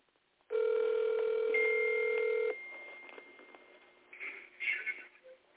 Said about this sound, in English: If you're not calling me, I'm going to call you. Let me see. He may answer the phone. He may not answer the phone.